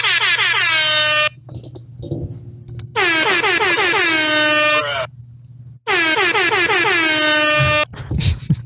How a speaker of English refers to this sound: Yeah, you want to do some air horns? We can do some air horns here. Where's my air horn sound effect?